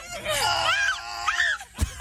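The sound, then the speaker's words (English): Marty the zebra from the film Madagascar screams in a high, wavering voice, one long swooping yell and then a shorter one, loud, ending with a brief thump. “This is actually Marty from Madagascar screaming.”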